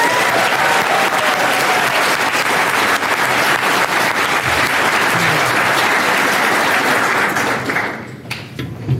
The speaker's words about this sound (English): Okay, so a round of applause for that.